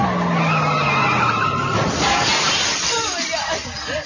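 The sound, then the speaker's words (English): Car tires screech in a long, loud skid, a sound effect in a spoof radio promo for 'Celebrity Car Crashing' starring Tonya Harding and Halle Berry; the squeal wavers over engine roar before dissolving into a noisy, rumbling crash-like wash of sound. “Let's rumble!”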